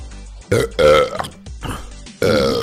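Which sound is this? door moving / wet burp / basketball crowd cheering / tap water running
wet burp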